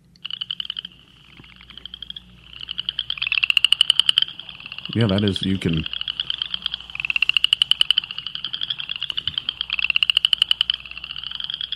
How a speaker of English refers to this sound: I sent him a good recording of an upland chorus frog. Sounds like you're rubbing your thumb down a comb. That's one of my favorites.